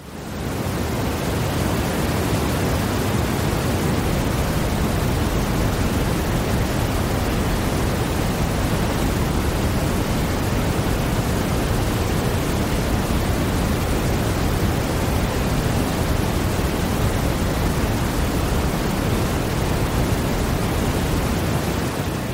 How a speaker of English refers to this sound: I'm going to play you some brown noise over this speaker.